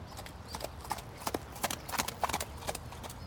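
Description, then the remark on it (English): A horse's hooves clip-clop on a sidewalk as someone takes the horse out for a trot, a steady trotting rhythm of sharp, bright knocks over a faint background hum. “And every once in a while, you can see someone taking their horse out for a trot on the sidewalk.”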